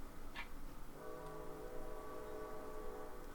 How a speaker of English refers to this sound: Train's here. Oh, yeah. Train's here.